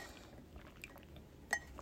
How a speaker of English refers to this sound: Drinking water. I'm being good. I'm drinking water.